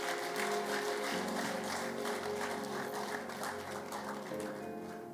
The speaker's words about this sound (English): Give him a mighty clap of it.